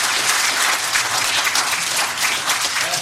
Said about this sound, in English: Would y'all give my wife a big round of applause? Will you just go ahead and do that?